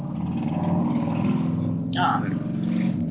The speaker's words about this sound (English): And there's a car that just went by on my street.